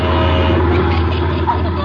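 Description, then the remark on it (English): Heavy oil trucks rolling past, a loud, steady low rumble of engines and tires with a constant droning hum and no break in the noise. “A bunch of oil trucks coming through.”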